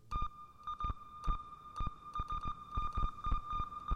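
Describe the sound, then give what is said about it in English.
A Korg synthesizer holds a steady, high electronic tone while short percussive pulses from its sequencer tick in an uneven, Morse-like rhythm, giving a beeping, satellite-style signal. No voices. “This one's kind of cool. It sounds like a satellite in space, if space had sound.”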